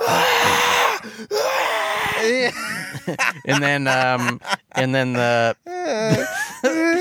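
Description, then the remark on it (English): A person imitates the agonized screaming of a burned man crawling out of something: loud, strained wails and groaning cries in several bursts, with harsh raspy breaths between them and no actual words. “He's crawling out of the thing screaming.”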